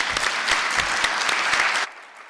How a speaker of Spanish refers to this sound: Por favor, un aplauso para el doctor Armando Mata.